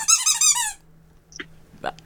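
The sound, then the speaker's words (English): A squeaky dog toy, used as a buzzer in a quiz game, gives a loud, rapid burst of rubbery squeaks lasting under a second, followed by a couple of fainter, shorter squeaks and a soft tap. “I've never heard a dog toy squeaked.”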